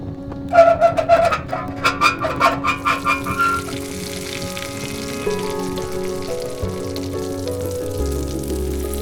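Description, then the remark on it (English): Molten lead boiling in a pot bubbles and spits in a quick run of sizzling bursts, then settles into a steady, heavy pouring rush as it pours down a pipeline into a radium-lined tank, with a low mechanical hum underneath, fairly loud. “Lead pours down the pipeline, gets irrigated into tank with radium lining.”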